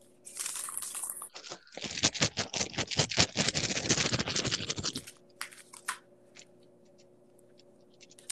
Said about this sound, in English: I was shuffling and one card jumped right out, turned over, and it's the Sun card.